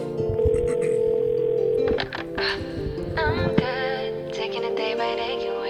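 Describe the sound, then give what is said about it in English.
A steady, loud telephone dial tone hums continuously, joined after a couple of seconds by a busy layer of shifting electronic and musical sounds while the tone keeps droning underneath. “I thought it was going to be like the 90s like skit with the phone. Phone skit.”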